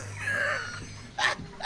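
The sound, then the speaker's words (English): A dog's squeaky yawn: a drawn-out, high whining tone that wavers, followed by two short breathy bursts, heard faintly over a low steady hum with no one talking. “Sorry, the dog got so bored it just yawned.”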